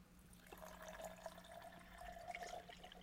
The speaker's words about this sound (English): Pour just a little bit. It's got a little nice little crystal bottle there. And this is probably the next to last drink from this bottle.